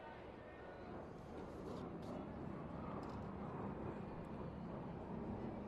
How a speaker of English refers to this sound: There's that flyover. There's that rumbling I was talking about. We'll just get used to it together.